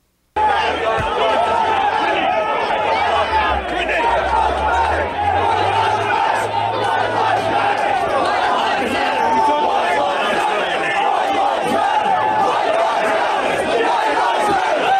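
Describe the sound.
A large crowd shouts and chants in a dense, continuous roar, many voices overlapping with rising cries and a steady low rumble underneath, loud throughout.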